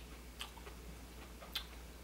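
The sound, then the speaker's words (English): Soft, wet chewing of an orange, with a few crisp bites and squelches spaced irregularly over a quiet low hum, no talking. “Purring and orange chewing.”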